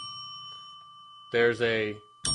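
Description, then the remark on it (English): A bell, rung to flag news about COVID, rings with a clear, sustained metallic tone that lingers quietly, then a man starts talking loudly over the fading ring. “So the bell is every time we ring it, it replies to COVID.”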